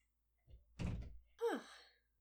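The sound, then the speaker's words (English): A door is shut with a solid, muffled thunk, followed moments later by a short, high squeaky creak that slides downward in pitch. No one speaks. “I'm going to shut the door because I'm afraid.”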